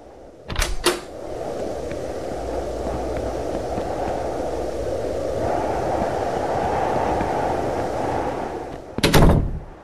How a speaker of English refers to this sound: Too late. Drove away with this dead guy's car.